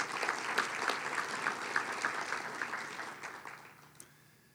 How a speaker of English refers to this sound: I also want to thank our Superintendent Student Advisory Council members who are here, and of course, the Chamber and our sponsors. So let's give all of them a big round of applause.